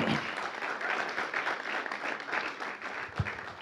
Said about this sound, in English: So would you please just give them a round of applause for all the work and time they put in today.